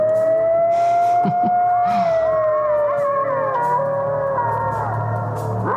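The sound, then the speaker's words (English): A chorus of coyotes howling, several long, wavering high-pitched wails sliding and overlapping with a few short yips, loud and steady throughout with no talking. “Those are my angels, the coyotes.”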